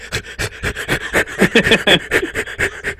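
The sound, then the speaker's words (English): A person imitates an Old English sheepdog, panting in quick, steady huffs with a few snuffling sniffs mixed in, fairly loud for about three seconds with no talking. “And now we go to the old English shepherd dog. What do you have to say?”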